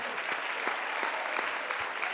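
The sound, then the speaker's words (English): A crowd claps their hands and shouts in praise to God, a dense, continuous patter of many hands, with a few individual sharper claps standing out, sustained at an even, fairly loud level throughout. “You might as well go ahead and clap your hands and shout.”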